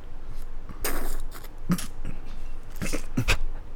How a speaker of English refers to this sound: can you take a nice, satisfying sip and then we'll and then we'll say goodbye?